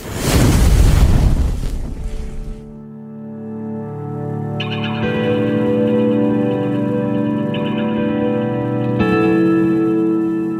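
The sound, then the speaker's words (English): A loud, deep explosion booms and rumbles for a couple of seconds, then cuts off into a steady, ominous droning tone that swells and lingers without any voices. “And that was when it blew up, and it blew all to hell.”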